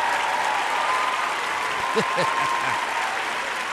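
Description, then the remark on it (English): A crowd applauds steadily, a dense wash of clapping that holds at an even level throughout, with a few short voiced whoops rising out of it midway. “This is a lively crowd for Tuesday, yes.”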